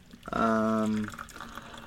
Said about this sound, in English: I'm gonna pour some coffee.